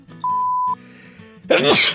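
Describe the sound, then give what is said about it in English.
A steady, half-second electronic beep sounds first, then after a short pause comes a single loud sneeze with a breathy, explosive burst. “Gesundheit.”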